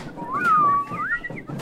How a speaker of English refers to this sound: Soon as I get a little backup, here they are, my whistling chorus.